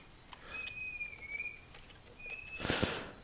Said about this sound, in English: I'm sorry, my son is squeaking in the background.